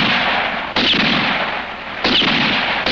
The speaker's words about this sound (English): And so I fired again. Four shots like four fateful raps on the door to my destiny.